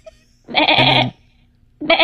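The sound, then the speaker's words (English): A goat or lamb bleats loudly up close, one wavering call lasting over half a second, followed by the start of a second bleat after a brief pause. “Or a goat or a lamb.”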